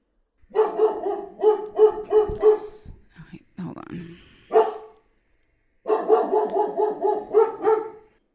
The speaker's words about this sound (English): okay, my dog's about to start barking because the bug man just came back out. She has not realized yet that he is here, but she will. She will freak right out. You gonna freak out?